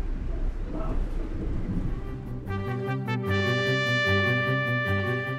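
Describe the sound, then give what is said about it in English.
An Amtrak Silver Star passenger train leaving Tampa rumbles steadily along the tracks with a low roar for a few seconds, then a sustained tonal, rhythmically pulsing sound rises over it and dominates the rest. “Well, we're leaving Tampa far faster than we arrived, and we've just passed the siding to the triangle that we turned on.”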